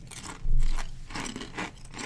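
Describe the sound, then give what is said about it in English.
Crinkling of a bag of maple bacon kettle potato chips brought from Canada, followed by loud, crisp crunching of the chips in a few bursts, with no one talking. “They're good-looking chips. Good crunch.”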